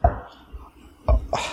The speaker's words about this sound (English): Well, I think it's about time we mix the gin and tonic. Now, watch for the colour change. All right, first, pour it in. Ice cubes.